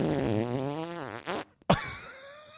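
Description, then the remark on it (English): A loud, drawn-out fart with a buzzy, wavering pitch, breaking off abruptly after about a second and a half, then a short sputtering burst that trails away. No talking. “and then you let out a 5 second long audible fart.”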